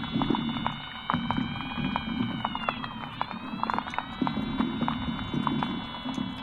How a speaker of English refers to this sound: in the murky undergrowths, somewhere between light and darkness, we start to hear all of the invertebrates that live in the bottom. All sorts of creatures such as water beetles and water scorpions.